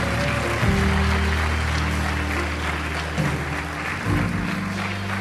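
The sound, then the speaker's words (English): An audience applauds for people who have just prayed a prayer of faith, in a steady, dense wash of clapping that lasts throughout, with sustained low keyboard chords that shift a few times underneath. No one speaks. “If you prayed that prayer, we're so just give them just a round of applause.”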